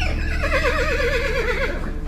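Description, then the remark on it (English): A loud horse shriek as the horses rear madly, a high wavering whinny that trembles rapidly up and down for about two seconds over a low rumbling background, with no talking. “Suddenly, the horses shrieked and reared madly.”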